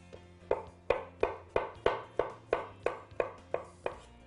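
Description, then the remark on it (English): A knife dices half an avocado on a cutting board for a salad in about eleven sharp, evenly spaced chops, each a crisp knock with a short ringing tail, in a steady brisk rhythm with no talking. “All right, so let's quickly dice that up, mix this salad, and it's good to go.”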